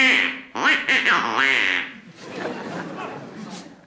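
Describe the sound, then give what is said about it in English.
A rapid run of loud, raspy duck quacks fills the first two seconds, excited, then gives way to a softer, noisy jumble of chatter and chuckling. “So, throwing the egregious duck under the bed, he immediately ate Grandma”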